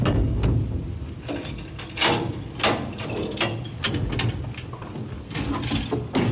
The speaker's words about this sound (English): Please stand clear of the closing door.